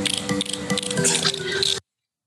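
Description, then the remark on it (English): A woman imitates dolphin chatter with a loud, creaky, rattling squeal that runs continuously for nearly two seconds, then cuts off abruptly. “This is …'s dolphin talk”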